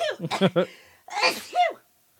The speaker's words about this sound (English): I gotta sneeze. Go ahead.